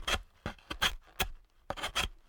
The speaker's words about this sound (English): I quickly rushed to carve a protective glyph on the door.